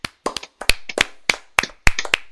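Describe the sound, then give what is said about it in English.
A small group claps their hands in a quick, uneven flurry of sharp, crisp claps that overlap slightly, lasting a couple of seconds with no voices. “The Disney Family Sing-Alongs, the number 7 seed, is taking the best Disney thing of 2020, and as we do at the end of every episode, we're gonna clap it out.”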